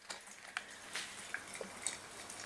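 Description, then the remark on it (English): A fizzy drink with a red strawberry in it pops and crackles quietly, recorded with the recorder held close to it, with a steady faint hiss broken by irregular sharp little clicks and tiny high-pitched pops. No one speaks. “Just holding the recorder close to it so you can hear the popping.”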